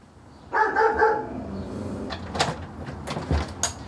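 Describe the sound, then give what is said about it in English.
A dog gives a short burst of barking, followed by clattering and knocking sounds like a door or cupboard being handled. No voices. “Good dog. Good doggy.”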